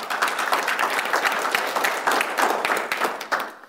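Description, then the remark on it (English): An audience applauds a woman who plays keyboard and sings, with dense, steady clapping that keeps a fairly even loudness for several seconds before thinning out at the end. No voices stand out. “Yeah, give her a clap.”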